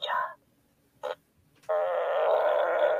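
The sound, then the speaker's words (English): A toy figure plays a wet fart sound: a short sputter, a brief blip, then a long, loud, buzzy and bubbly fart that runs to the end, with no talking over it. “That's a diarrhea fart.”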